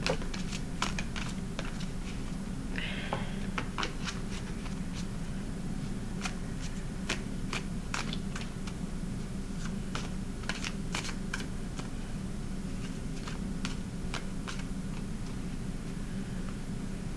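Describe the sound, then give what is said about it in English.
A deck of tarot cards being shuffled by hand, producing scattered soft snaps and papery clicks at an uneven pace over a steady low hum, with no one speaking. “Shuffle.”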